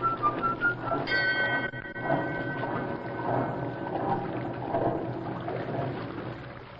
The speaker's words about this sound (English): Blow your flute at me, will ya?